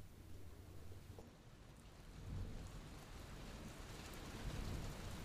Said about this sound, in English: Let's imagine it's a rainy day